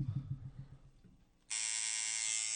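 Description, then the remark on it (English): A steady, loud electric buzz from a homemade motor machine, made in prison, starts abruptly and holds at a constant high-pitched drone, following a brief stretch of low rumbling noise. “Can you hear that buzz? That's the authentic sound.”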